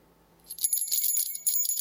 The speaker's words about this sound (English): So I'd ring the bell just to make it a bit Christmassy.